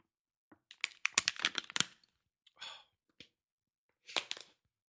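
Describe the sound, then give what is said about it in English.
Someone pauses for a drink of water during a break at Hoopa Studios: a plastic bottle crackles and crinkles in a cluster of sharp bursts, then a short breathy exhale and a final burst of crinkling. “It's a little water break here in Hoopa Studios.”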